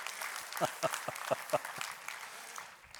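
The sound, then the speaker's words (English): A church audience applauds during a sermon: a steady wash of clapping punctuated by several sharp, louder claps in the first half, with murmured voices underneath as the applause tapers off toward the end. “I should have let you clap there.”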